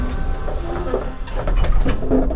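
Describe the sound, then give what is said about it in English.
An elevator door creaks open over the steady mechanical rumble of the elevator, with a few short clunks and scrapes in the middle and drawn-out, groaning tones throughout. “The door creaks open.”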